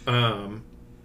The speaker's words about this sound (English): Cat's wanting to chime in now, too. The cat's into Dune also.